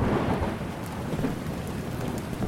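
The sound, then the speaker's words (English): Steady, heavy rain hisses without a break while a deep thunder rumble rolls underneath, heard aboard a sailboat during a storm at sea, filling the whole stretch at an even, fairly loud level with no voices. “Moments later, it started to rain.”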